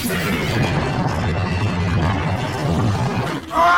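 A man screams loudly and without pause for several seconds, a harsh, rough, roaring cry that briefly drops off near the end before a sharper, higher burst.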